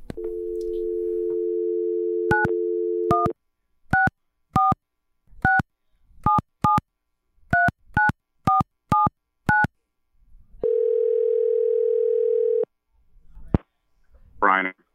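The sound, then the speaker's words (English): A telephone dial tone hums steadily, then about eleven quick touch-tone beeps are keyed in an uneven rhythm, followed by a longer steady tone, as a newsroom phones its New Jersey reporter. Clear, with no talking. “we need to get our New Jersey reporter, Brian Thompson, on the phone to take us through it”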